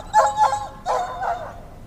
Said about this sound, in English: The dog begins to howl.